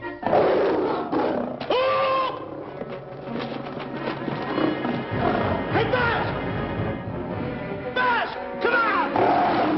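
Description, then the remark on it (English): A lion roars in loud, rumbling bursts, several growling calls rising and falling across a dense, noisy background with hints of commotion and hoofbeats. “Well, Buzz, I guess we lost that pussycat.”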